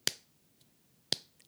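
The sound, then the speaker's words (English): Two sharp hand claps about a second apart, clapping to the rhythm and the beat in a music lesson, each a crisp, bright smack that fades quickly, with near silence between them and a faint tap or two afterward. “Let's clap to the rhythm. Let's clap to the beat.”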